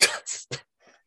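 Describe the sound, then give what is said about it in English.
A quick run of sharp, breathy hiccup-like bursts: three abrupt catches close together, then a fainter fourth one trailing off, with no talking. “excuse me, had a hiccup there.”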